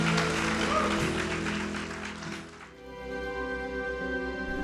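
A church audience claps for a speaker in a dense, steady burst of applause over sustained music chords; the clapping fades out after a few seconds, leaving the held tones ringing on alone.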